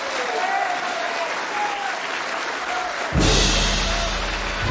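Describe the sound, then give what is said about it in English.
A crowd claps steadily to bring on Minister Malcolm X, a dense, continuous wash of many hands with no pauses, then abruptly swells louder and fuller, taking on a low rumble for the final seconds. “Let us bring him on with a round of applause.”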